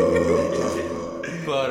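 A long, deep burp, heavily boosted in the bass and washed in reverb, rumbles loudly for nearly two seconds with no talking over it.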